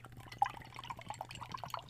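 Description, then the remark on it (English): An 8% beer with zero IBUs being poured into a glass, a soft trickle with small gurgles and bubbly splashes over a steady low hum, no one speaking. “It definitely pours like an IPA.”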